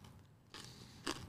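A crunchy bite into dried apple with honey: a rough, crackling crunch followed by a second, sharper crisp snap, fairly quiet and with no talking.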